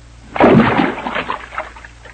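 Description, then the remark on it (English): A single splash as a rock drops into a water hole, a sudden burst followed by about a second and a half of sloshing and trickling that fades away, with no talking. “There's a water hole. Hey, what are you picking up that rock for?”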